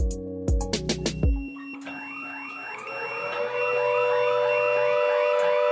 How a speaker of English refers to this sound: So that's a pager going. And that alerts us, and it also alerts us on our phones.